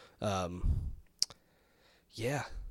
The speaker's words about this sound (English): I mean, I'm just kind of clicking through this trailer right now.